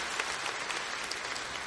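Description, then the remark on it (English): A church audience gives a praise clap offering to the Lord, steady, dense applause from many hands creating a bright, continuous crackle that holds at an even loudness throughout, with no voices standing out. “Hey, one more time, would you just give the Lord a praise clap offering for what he did?”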